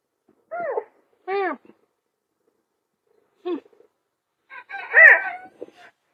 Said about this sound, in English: Serval, oh my god. You're a fucking annoying cat.